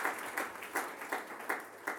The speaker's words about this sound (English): Yeah, give her a round of applause too.